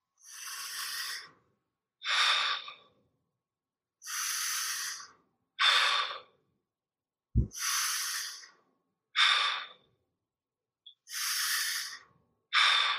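Slow, deep breaths alternate between long airy inhales and shorter, forceful exhales, about four full cycles, loud with one brief thump, part of a guided exercise of 30 deep breaths drawn into the belly and chest and let out through the mouth.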